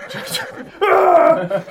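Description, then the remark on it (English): A voice imitates a frantic horse whinny: after a brief murmured lead-in, a loud, strained, wavering cry bursts out and holds for about a second before trailing off. “The horse is like frantically knocking over gravestones, yelling.”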